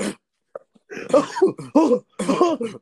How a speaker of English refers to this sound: So hold on. That coughing sound, hold on.